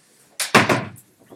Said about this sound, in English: I'll close the door. Let's make sure it's loud enough.